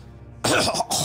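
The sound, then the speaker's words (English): Two harsh, raspy coughs burst out loud after a brief quiet moment, the second following right on the first with barely a pause, as someone collapses to the ground. “Redfield starts to walk, and he collapses to the ground, coughing.”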